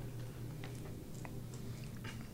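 Someone chews a cracker at the mic, with a series of small, irregular crunches over a steady low hum and no talking.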